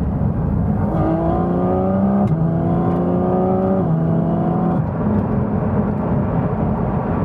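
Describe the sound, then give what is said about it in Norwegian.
A car engine hums loudly from inside the vehicle, its pitch climbing through a few gear changes as it accelerates, with steady road rumble underneath and no one speaking. “Vi kjører. Det kjennes jo veldig riktig ut.”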